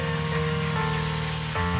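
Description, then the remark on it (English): Steady, dense applause from a crowd, a continuous crackling wash of many hands clapping at even loudness, with a faint tonal hum running underneath and no voices. “Come on, keep clapping, keep clapping, keep clapping.”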